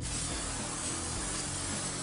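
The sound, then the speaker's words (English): A steady, continuous aerosol hiss of carnauba non-stick cooking spray being sprayed onto a baking sheet, fairly loud, lasting about two seconds with no pauses and no voices. “Now, as you roll that, and then we'll put this on a baking sheet, we have some non-stick spray. Carnauba cooking spray. All right, so we'll spray this down.”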